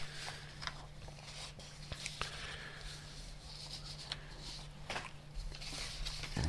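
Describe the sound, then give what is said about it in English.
Papers being shuffled in a soft, irregular rustle, with brief crisp bursts of crinkling and handling over a steady low hum; no one speaks. “You can hear the shuffling of papers.”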